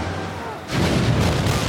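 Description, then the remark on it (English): A quiet, low rumbling bed suddenly gives way to a massive explosion aboard a battleship, a deep, loud blast that roars and rumbles on heavily after the initial hit, ripping a large hole in the hull. “Before he can make sense of it all, his cabin and the entire ship are rocked by a violent explosion.”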